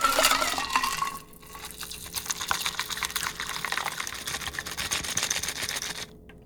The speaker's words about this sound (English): Strain that into your martini glass.